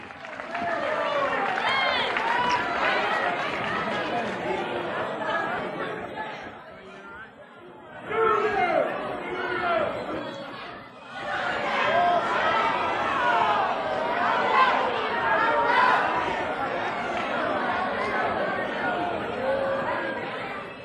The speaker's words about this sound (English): let's hear an applause for Johnny Rich